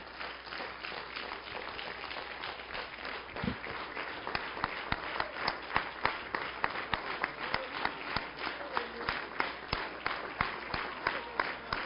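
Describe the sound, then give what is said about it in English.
A church audience claps steadily in praise of the Lord, a dense wash of many hands that turns into rhythmic, unified beats partway through, with a few faint voices underneath. “One more time, give the Lord a hand clap of praise.”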